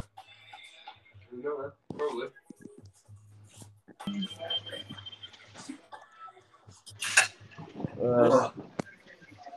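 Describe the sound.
Metal cutlery being cleaned clinks and rattles in a scattered run of sharp, ringing knocks, with people's voices talking quietly in between the clatter.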